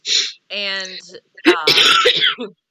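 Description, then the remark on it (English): A single sharp, breathy sneeze bursts out at the start, followed by a short voiced sound, and then a person begins talking. “And bless you, and I you know, whatever.”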